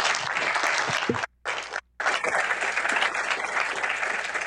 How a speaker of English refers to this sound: All right. Well, great. Thank you. Everyone, please give a warm round of applause to our panelists.